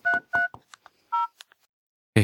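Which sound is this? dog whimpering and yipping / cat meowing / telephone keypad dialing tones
telephone keypad dialing tones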